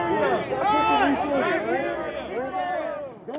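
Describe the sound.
A loud, dense crowd of protesters in a park, many overlapping voices shouting and yelling at once as police disperse them with batons, with rising and falling cries layered over a continuous roar of commotion throughout.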